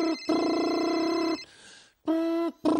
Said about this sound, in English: is your phone ringing?